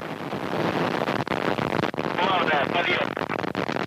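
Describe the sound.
A loud, steady rumbling roar of rocket engines firing at main engine start for the launch of the 68th Progress resupply craft to the International Space Station fills the whole clip, with a voice speaking faintly over the thunderous noise.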